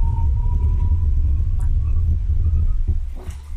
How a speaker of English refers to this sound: Hold on, this is an Audi. I want to see this guy. I want to hear him see the I want to hear the sound. He's going to go up to over 100 miles an hour now, and he's going to slam on the brakes.